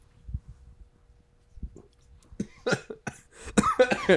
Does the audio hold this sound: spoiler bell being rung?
no